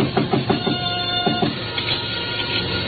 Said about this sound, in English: Still in front of me when I knocked again at Shinyok's back door.